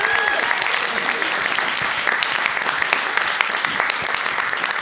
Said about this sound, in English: If we could give a massive round of applause to my dear friend